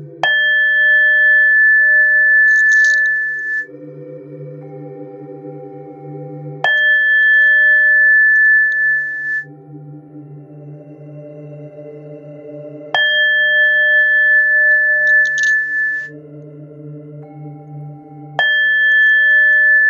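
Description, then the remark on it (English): A meditation bowl is struck four times at slow, even intervals during a chakra meditation, each bright chime ringing out and shimmering over a deep, humming resonance before the next strike. No one speaks. “And now with each chime of the ball, the sacral chakra will open further.”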